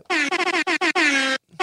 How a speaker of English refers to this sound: Let's send that super air horn out to everyone we've lost.